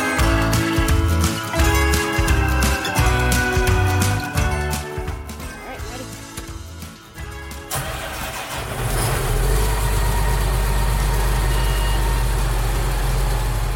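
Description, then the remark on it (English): A John Deere self-driving tractor with GPS, bought in 2008, cranks to life partway through and settles into a loud, steady low rumble, with no one speaking. “And that brings us to the self-driving tractor.”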